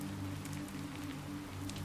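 Soft, steady rain patters in a continuous hiss, with scattered light drop taps on top and a low, even hum underneath. No one speaks.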